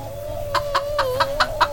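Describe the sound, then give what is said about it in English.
Chickens cluck in a quick, evenly spaced series of short bursts in a chicken run on a ramshackle farm on the outskirts of Arkham, over a steady sustained tone and a low background rumble. “On the outskirts of Arkham, not too far away, is a ramshackle farm, and an 11-year-old boy shaking with terror in a chicken run.”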